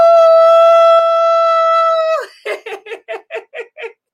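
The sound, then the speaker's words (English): A person imitates a wolf with a long, steady, loud howl, then breaks into a quick run of about seven short rhythmic yips. No other voices or sounds. “We're going to howl at the moon.”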